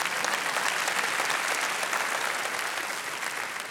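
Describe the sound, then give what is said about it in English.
Steady audience applause fills the whole stretch, a dense wash of many hands clapping at once, loud and sustained before tapering slightly near the end. “And in my heart, you can clap for that.”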